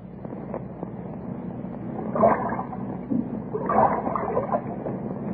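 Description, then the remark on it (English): Sudden wind gusts rush in around a boat over a steady low roar, swelling into two stronger blasts partway through before settling back to a constant blowing. No voices are heard. “That wind, where did it come from?”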